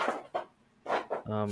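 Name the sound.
dogs barking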